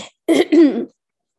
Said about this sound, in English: Sorry, I just had to cough there.